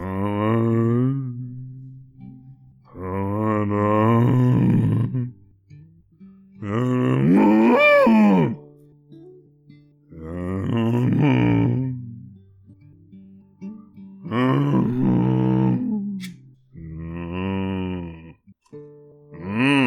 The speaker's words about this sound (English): Cows! Damn it, them cows be singing. It goes a little something like this.